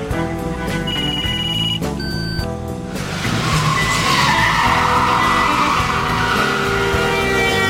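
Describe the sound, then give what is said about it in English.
Car tires screech loudly with shrill, sustained squealing tones for about three seconds as a car skids and crashes into a van, then give way to a harsh, dense burst of noise that roars on to the end. No voices. “She ran into a van and hit a homeless man.”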